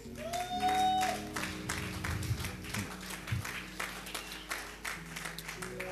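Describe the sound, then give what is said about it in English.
On the first Sunday of the year, an audience breaks into applause, a dense, steady patter of many hands clapping for several seconds, with a sustained musical tone and low instrumental hum running underneath. “It's okay to clap.”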